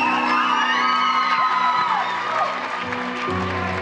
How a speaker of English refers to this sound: But guys, I want you guys to come up stage for a second. Thank you. That's very kind. Oh, wait. Let's give a clap for them, guys.